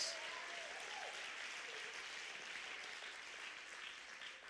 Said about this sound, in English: Someone give the Lord a hand clap of praise.